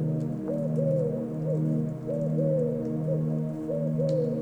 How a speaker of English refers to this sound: An owl calls to you from the woods.